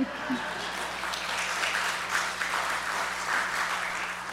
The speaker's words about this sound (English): And this means, thank you, you can clap for that.